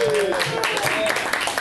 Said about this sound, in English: But thank you to our participants tonight here at St. Louis Agile Link for participating in this Agile Life. And thanks, guys. Nice round of applause.